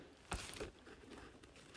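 A quick, soft papery swish and rustle as a book page is turned, one brief sweep followed by faint rustling, with no voices.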